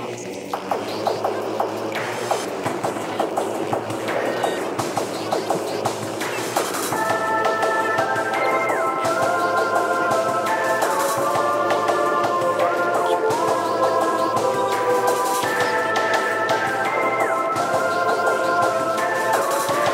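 Instrumental main menu music from the video game Metroid Prime, with a steady pulse, opening on a dense, murky texture before bright sustained tones and a gliding melody take over, playing continuously without any voices.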